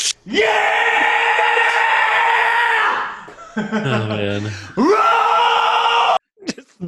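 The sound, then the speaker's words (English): A man screams at full volume on a recorded bonus track, in two long, sustained bursts, his voice sliding downward in a brief strained dip between them, harsh, with a short gasp at the end. “Literally just 30 seconds of him screaming.”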